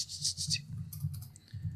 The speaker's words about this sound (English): My eyes are closed, and now I'm typing. I hear it. I hear the keyboard.